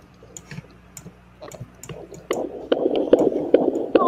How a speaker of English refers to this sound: Before we get started, housekeeping. Number one, I can hear my son's heartbeat.